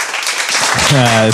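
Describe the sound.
A short burst of audience applause, a dense steady crackle of many hands, with a voice rising over it toward the end.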